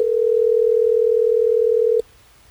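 A steady, single-pitched ringing tone of an outgoing telephone call placed on air by Hot 101.5 radio hosts sounds loudly for about two seconds, then cuts off abruptly into near silence. No one speaks.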